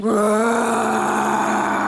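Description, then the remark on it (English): A woman lets out a single drawn-out roar with her voice, a loud, strained, steady cry lasting nearly two seconds, with no talking around it. “I am woman. Hear me roar.”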